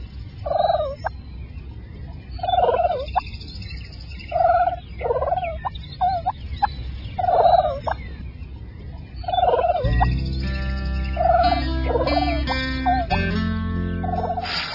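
Wild turkeys gobble again and again in short, rattling bursts, loud. Partway through, steady background music swells in beneath the calls.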